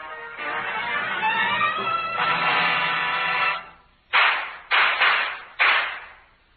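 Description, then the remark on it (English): Four sharp, loud gunshots crack out in quick, uneven succession, each with a brief ringing decay, following several seconds of dense, noisy background sound with faint tonal lines. “Man, that shooting just now.”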